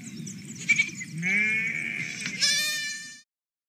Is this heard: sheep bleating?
yes